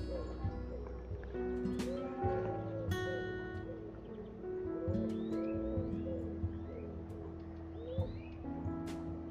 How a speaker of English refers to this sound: That's a common wood pigeon, and a little serin. Oh, he was right above me.